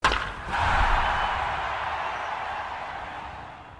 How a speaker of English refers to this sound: this is the first make a category of like just a home run or something, right? Just and put a little soundbite of us knocking the ball out of the park.